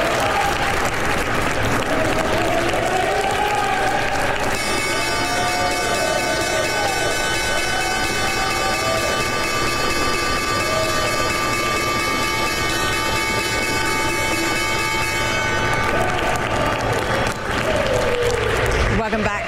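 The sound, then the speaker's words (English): The New York Stock Exchange opening bell rings steadily for about ten seconds on a Monday morning for the first session of the week, a bright sustained metallic clang, over loud, continuous applause and crowd noise that carries on before and after it. “live from the New York Stock Exchange and the opening bell this morning for the first session of the week.”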